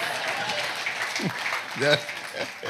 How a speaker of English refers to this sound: You're just right on cue. You go ahead and applaud.